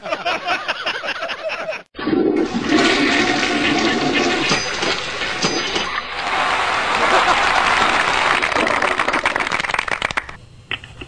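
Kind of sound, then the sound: household object, toilet flush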